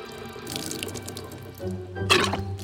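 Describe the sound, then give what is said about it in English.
Water runs steadily from a fountain, moderately loud, with a brief burst of heavier splashing near the end. No voices are heard. “Uh-oh, the water fountain is running low!”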